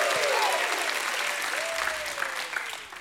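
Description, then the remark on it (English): A church audience claps steadily and loudly, giving God a hand clap and a shout of praise, with scattered shouts and whoops rising over the dense applause, sustained throughout with a slight fade near the end. “Go ahead and give him a hand clap and a shout of praise.”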